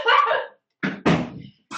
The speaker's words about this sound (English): Sorry, my dogs are attacking each other.